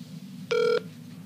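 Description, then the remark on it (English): An unanswered phone call ringing on the line at 10 p.m. on a Sunday: one short, steady electronic ring tone that cuts in and stops, heard over a low, constant hum with no one answering or speaking. “I knew that no one was gonna pick up.”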